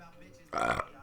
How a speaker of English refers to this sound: I'm burping like a motherfucker. I drink all my fucking booze. Behind me is fucking bags full of fucking bottles and cans of fucking booze and energy drinks.